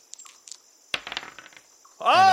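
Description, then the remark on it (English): Dice clatter across a hard table in a quick burst of sharp clicks and rattles that settle after about a second, a stealth check roll that lands a natural 20, followed by a loud voice reacting at the end. “Roll me a stealth.”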